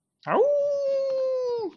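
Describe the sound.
A person imitates a wolf howl: one sustained, steady wail that swoops up at the start and drops off at the end, fairly loud, with no other sounds around it.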